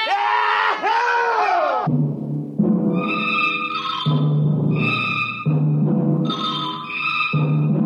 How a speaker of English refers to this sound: Yahoo! 20 bottles were opened and drunk. The voices got louder. The Earth laughs and shouts, echoing across the empty Martian sands.